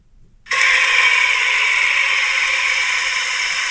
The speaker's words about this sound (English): No, just water going into a pot.